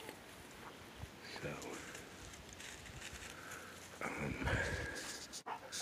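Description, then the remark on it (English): A dog pants in steady, breathy bursts outdoors after coming up a hill, with rustling and scuffing movement around it and a brief murmur of a voice in the background. “dog had just came up the hill.”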